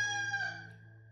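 A single rooster crows in a long, drawn-out, harmonically rich call that fades away toward the end, heard alone with no talking.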